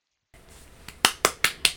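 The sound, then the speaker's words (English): Four sharp, crisp claps in quick, even succession from one person, fairly loud, preceded by a faint softer clap and no talking. “Round of applause.”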